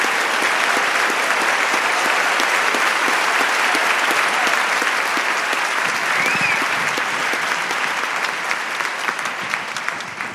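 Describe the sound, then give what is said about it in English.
Sustained applause from a large, sold-out audience at the Fitzgerald Theater welcoming Abraham Verghese, a dense wash of rapid overlapping claps holding steady and loud for about ten seconds before beginning to thin slightly at the end. “So please give Abraham Verghese a very warm welcome to the Fitzgerald Theater.”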